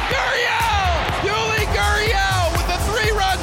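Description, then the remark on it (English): A dense, roaring crowd at a Houston Astros baseball game cheers a ball hit to left field loudly and steadily, with overlapping yells, whoops and rising shouts layered over a constant wash of noise. “Whoever in this crowd wasn't standing before, well, they're getting to their feet now.”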